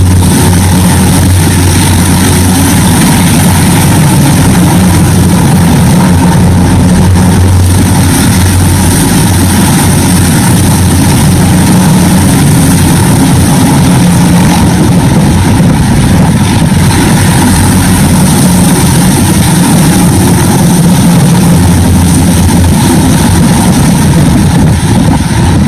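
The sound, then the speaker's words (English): Loud, continuous rotor and engine rumble from about four U.S. military helicopters flying low down a street in downtown Los Angeles during military drills, a deep steady drone with faint pulsing that fills the whole stretch, with no one speaking. “So there's like four different helicopters within the span of a minute flying down the street.”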